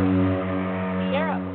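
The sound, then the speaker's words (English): A truck drives past outside, its low engine rumble droning steadily and fairly loud throughout, with a brief rising whine near the end. “That was a car, a truck going down.”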